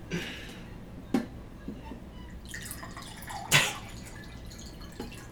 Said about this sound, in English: For the audience, I am pouring water.